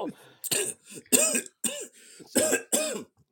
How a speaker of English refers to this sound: Straight out of the UK with a tea sip. From a tiny cup, it sounds like. Right, and he's choking on it.